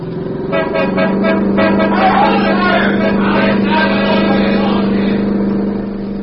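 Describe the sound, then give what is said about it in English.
A car accelerates and drives straight through, its loud, steady engine drone accompanied by blaring horns and a clamoring crowd around it. “The stopping car is ahead. I'll try to drive on through.”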